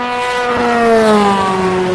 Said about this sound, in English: That's an LMP2, probably the Nissan engine. Another LMP2, here's a couple.